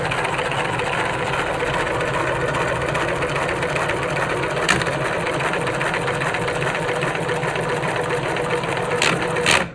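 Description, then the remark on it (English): A small electric motor runs steadily during a real-life test, spinning plastic gears that rotate a unit, whirring with a dense, gritty crackle throughout from the plastic and the motor jumping from 0 to 100 right away, plus a couple of brief sharper clicks; no one speaks. “The crackling sound, number one, is the plastic, and number two is that the motor is going from 0 to 100 right away, instead of going through a short phase to give the motor more torque, so that it doesn't just go 0 to 100 real quick”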